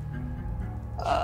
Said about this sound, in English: Oh God, I'm burping. That's not a good sign.